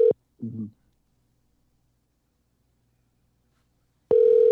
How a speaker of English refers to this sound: If he better answer this goddamn phone.